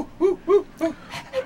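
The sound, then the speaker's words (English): A dog wearing a new vest whimpers in a string of short, rising-and-falling whines, four or five in quick succession, with a soft breathy pant between them. “It's kind of a rage with dogs right now, you know, to wear these things.”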